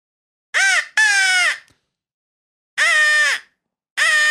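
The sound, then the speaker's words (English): A crow call whistle is blown into a microphone, producing four loud, raspy caws: a quick pair, a pause, then two more separated calls. No one speaks. “And like, we have this here crow whistle.”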